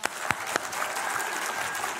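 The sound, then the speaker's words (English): A burst of applause from a church audience, dense overlapping hand claps with a few sharper claps standing out near the start, steady and moderately loud for about two seconds with no voices. “Like, that you don't have to applaud for that, but I like mine cold on both sides.”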